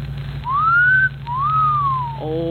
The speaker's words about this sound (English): Well, then you should have made the whistle shorter, like this.